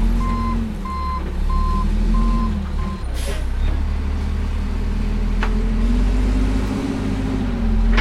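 A truck's reversing alarm beeps steadily about four times over a low diesel engine rumble, then a short hiss like an air brake as the engine keeps idling.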